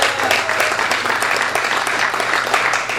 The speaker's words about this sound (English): Yes, let's applaud.